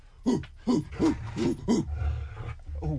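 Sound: dog barking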